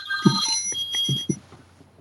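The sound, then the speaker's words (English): A telephone rings with a bright, buzzing electronic tone that lasts about a second and then stops, with a few soft low thumps underneath and no talking. “We're having phone difficulties. Ring. Here we go. Ring.”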